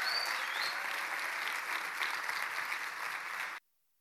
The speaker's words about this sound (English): So please give him a huge round of applause as he comes to minister.